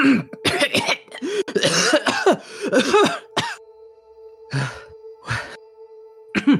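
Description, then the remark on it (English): A voice acts out a burst of raspy, exaggerated coughing and throat clearing, fairly loud, with a few separate hacks at the end over a steady faint hum. “As the blue box gives a cough.”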